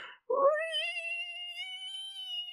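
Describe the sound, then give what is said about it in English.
A voice imitates metal pulling against bathroom tiles: a brief breathy burst, then a sustained, high, whining screech with a rich, buzzy tone that wavers slightly for about two seconds, with no other sounds. “Of the metal, like, pulling against the tiles in the bathroom, and then all of a sudden it, like, catches the wood on the door, and it starts to, like, come into the room with you guys.”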